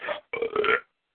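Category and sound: human body sound, belch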